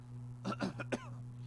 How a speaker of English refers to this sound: Sorry, I'm getting kind of a cough here.